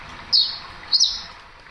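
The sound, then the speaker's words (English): Birds twitter in the trees above, two bright high chirps about half a second apart, over a steady soft hiss of background ambience. No one speaks. “You can hear the peaceful twittering of birds in the trees above and the gentle flow of water from a stream nearby.”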